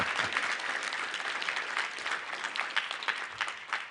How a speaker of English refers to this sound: And so we want to say thank you. I don't even mind if we clap right now to say thank you. Thank you for that.